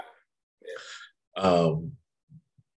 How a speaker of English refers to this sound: Just because you yawn, it doesn't mean that you're tired. It means your body's not getting enough oxygen, so it's forcing you to open your mouth so that you can get oxygen in that way.